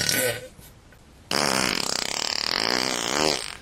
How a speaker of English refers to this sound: sometimes there'd be like gas in the coal mines from all those coal miners farting, whatever the case may be.